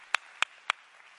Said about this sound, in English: We ought to give the Lord a hand clap of praise for that.